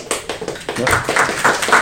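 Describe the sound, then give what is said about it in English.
A short burst of audience applause for an ambassador's talk at the Jackson School, UW, many hands clapping in a dense, steady patter that stays fairly loud throughout, with no voices over it. “Save the applause.”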